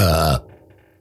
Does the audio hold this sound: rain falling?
no